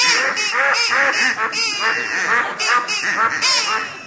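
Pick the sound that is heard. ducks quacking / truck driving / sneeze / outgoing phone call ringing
ducks quacking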